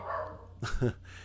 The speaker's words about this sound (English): If anybody heard that, that's of course you know that that's my my dog. he's the best guard dog in the world.